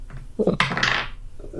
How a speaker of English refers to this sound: I get to roll three dice. Ugh.